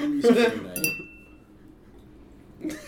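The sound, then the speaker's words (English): A single bright, high-pitched bell ding rings out after a short burst of voice, its clear tone lingering and fading over about a second before another brief sound; the bell signals a tea break. “Well, that's the bell. Ring-a-ding-ding, everybody. Tea break.”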